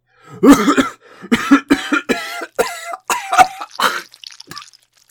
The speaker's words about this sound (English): Now what's that you've coughed up? Just a bit of phlegm. It's a bloody pulsating sack.